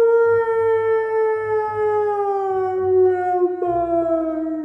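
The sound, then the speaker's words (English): A distant wolf howl echoes in one long, unbroken note that holds steady and sinks slightly in pitch toward the end, with a soft low rumble underneath and no voices. “A distant howl echoed.”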